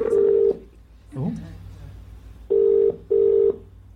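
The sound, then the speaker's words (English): A phone line's dialing tone beeps in steady, clear electronic bursts as a missed call is returned: one pulse, a pause with a brief murmured voice, then a quick double pulse, over a faint background hum. “Let's give this a little call. Hang on a minute. Call phone.”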